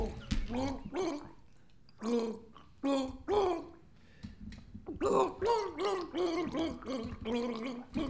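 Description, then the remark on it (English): Someone gargles a song tune for others to guess in a quiz round, the bubbling voice rising and falling in pitch through melodic phrases with brief pauses between them, loud and alone with no speech. “Excellent gargling,”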